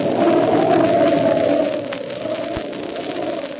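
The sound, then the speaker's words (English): Snowstorm wind on a lonely mountain road in the darkness, around a truck already snowed in, howls steadily with a wavering, moaning tone over a broad rushing hiss, loud at first and easing slightly partway through but never stopping. “The truck is already snowed in and the storm's getting worse.”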